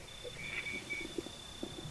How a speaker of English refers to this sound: It's 40 minutes after sunset at Pullen Pullen, and I'm sitting in red dust between these ancient stone mesas, and we're going to give up soon because we're not hearing anything. Hear that tiny bell? That is a night parrot.